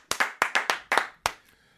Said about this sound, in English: Man, I'm not clapping for me. I'm clapping because I'm glad to be back.